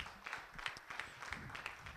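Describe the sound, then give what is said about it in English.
An audience claps together to give God a hand clap of praise, a dense, even patter of many hands with a few sharper accents recurring in a loose rhythm, lasting the whole two seconds with no talking over it. “Why don't you give God a hand clap of praise for that?”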